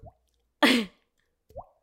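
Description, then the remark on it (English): A person imitates water drops with the mouth: two short, rising 'bloop' plops about a second and a half apart, with a brief breathy, hissing burst between them. Fairly quiet. “You're in a recording session and someone says, I need a water drop and I can't pull up the”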